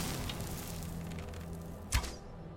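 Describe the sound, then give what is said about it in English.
A single sharp arrow release from a bow in a video game near the end, a quick whooshing snap as an arrow is shot at an enemy, standing out against a steady, busy game background hum with no talking. “He's evading my arrows.”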